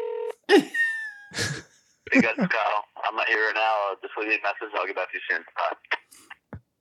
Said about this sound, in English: Is he dialing? He's dialing.